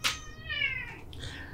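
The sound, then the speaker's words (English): A female cat lets out one long, drawn-out meow, fairly loud, its pitch rising then sliding down, with no talking over it. “And are doing better than this cat.”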